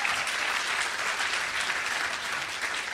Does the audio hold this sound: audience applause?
yes